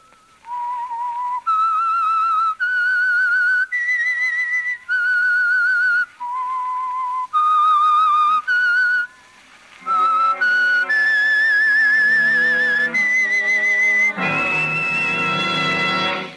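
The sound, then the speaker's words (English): A solo whistled melody of sustained, pitch-shifting notes, loud, the whistle signalling the Signal Oil Program, The Whistler, then joined by orchestral instruments swelling underneath before a full, dense ensemble chord at the end. No talking. “That whistle is your signal for the Signal Oil Program, The Whistler.”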